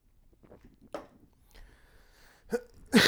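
Someone sips water: soft mouth noises and a short slurp, a brief steady hiss, then a gulp and a loud, breathy exhale at the end. No talking.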